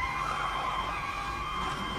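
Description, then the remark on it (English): A car roars along at speed in a chase with police sirens, a steady, high tire squeal riding over the engine noise, loud and continuous for the whole moment, like a skid. “All right, now I need you to outrun the cops.”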